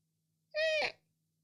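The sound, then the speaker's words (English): A person's voice imitates a bird as a movie sound effect with one short call: a steady, nasal tone about half a second long that breaks into a raspy squawk at the end. No other sounds. “I'm doing some of the bird sound effects for this movie.”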